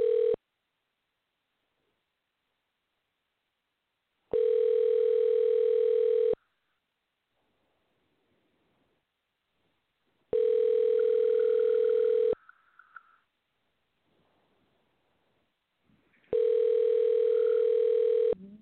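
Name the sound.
telephone dial tone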